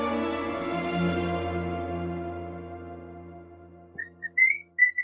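A sustained, humming tone fades out, then pet birds whistle several bright, clear notes in short bursts near the end, like fragments of a tune, fairly loud.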